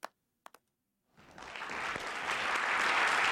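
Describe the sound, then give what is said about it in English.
A few isolated claps sound, then after a brief pause a crowd bursts into applause that swells steadily louder and fuller, a dense wash of clapping. “We need a lot louder clap than that, all right?”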